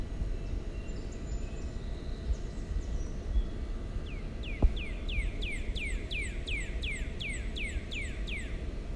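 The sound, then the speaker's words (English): A bird gives a quick series of about a dozen bright, repeated chirps in the second half outside an apartment in Manhattan, New York City, clear above a steady low rumble of city noise. No one speaks. “Yes, New York City, and the only sounds we can hear are birds chirping.”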